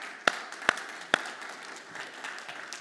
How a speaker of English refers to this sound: Okay, we probably won't applaud all morning because this is going to get old pretty quick. So, we'll hold our applause for a bit.